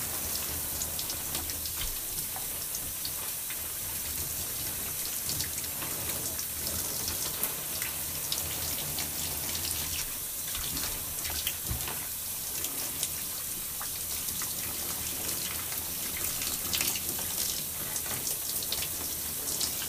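Steady running warm water splashes continuously for the whole stretch, an even hiss like a tap or shower rinsing hair on the scalp, with small spattering variations and no voices.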